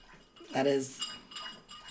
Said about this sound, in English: That's Bruce giving us the bell that we need to go and wrap it on up.